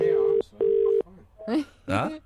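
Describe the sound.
A telephone ringback tone sounds as a steady double buzz, two short pulses close together, followed by brief bursts of someone speaking over a quiet line.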